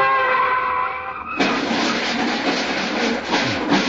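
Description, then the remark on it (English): A sustained car horn blares as someone runs out across the street in front of traffic. It gives way abruptly to a loud, rushing wash of street traffic noise with a harsh, skidding edge that continues to the end. “She's running right out in front of the traffic.”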